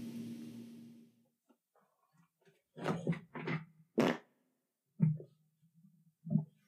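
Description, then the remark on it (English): A long, buzzy fart blasts right up against the microphone for about a second. After a pause, a few short, choppy bursts of sound follow, with no talking. “I just got up and farted into the microphone and then sat down and smelt it on the microphone and almost threw up.”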